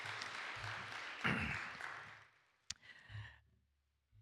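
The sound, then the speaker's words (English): An audience applauds a bishop and his family one morning with dense, steady hand clapping that swells briefly, then thins out and fades, with a sharp single knock near the end as everyone quiets. “Can we give them a great hand clap this morning?”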